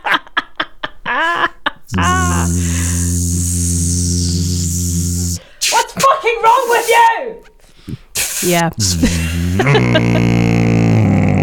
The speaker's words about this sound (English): Me trying to find the buzzing noise in my pedal chain ASMR.